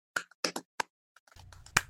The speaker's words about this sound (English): Golf clap. Standing ovation. Standing ovation.